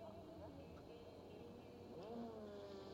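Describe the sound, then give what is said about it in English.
A Gibson V8 engine in an LMP2 race car, made in Repton, Derbyshire, turns over and catches as the driver restarts it on the track, its steady drone swelling into a rising rev partway through, amid a constant background rumble. “A little bit of gravel to get sorted out as well on the track as Kuba is trying to restart the Gibson engine on that LMP2, the pride of Repton in Derbyshire, that V8.”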